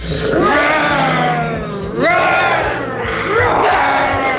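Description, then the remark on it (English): Several family members roar together in imitation of a tiger, three loud, overlapping bursts that swell and rise in pitch, with strained, throaty tones and no words. “That was a good tiger impression.”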